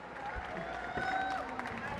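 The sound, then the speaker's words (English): An audience applauds as guests are invited onto a stage, a dense, steady wash of clapping that holds at an even level for the whole two seconds, with murmuring crowd voices blended underneath. “Please can we have a round of applause?”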